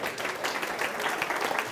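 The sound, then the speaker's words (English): A crowd applauds steadily, many hands clapping in a dense, continuous patter at a moderate level with no talking over it. “You can applaud that.”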